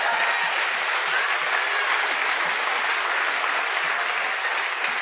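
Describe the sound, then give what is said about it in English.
A large audience applauds steadily after several people testify that God healed them physically. The applause is a dense wash of many hands clapping at once that stays loud and even from start to finish, with no voices standing out. “And so, yeah, there should be bigger applause than that for God healing people.”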